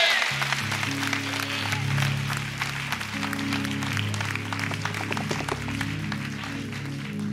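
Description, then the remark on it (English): An audience stands and gives God a hand clap, clapping steadily and loudly for several seconds, a dense crackle of many hands, while sustained organ chords hold underneath. “Stand on your feet and give God a big hand clap.”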